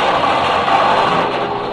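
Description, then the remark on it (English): A steady, dense rumble and clatter of a train rattling around a curve toward the mouth of a mine, loud and continuous, with no voices and no sharp breaks for the whole short stretch. “He ceased his howling and gesturing when the train rattled around the curve, and they saw the black mouth of the mine yawning before them.”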